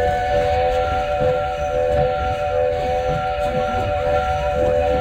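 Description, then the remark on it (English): A steam train whistle on a train ride at Disney World blows one long, steady tone, loud and sustained for the whole stretch, over a low rumbling rail background; one long whistle signals an emergency stop and the train is stopping. “Hey, what does that whistle mean?”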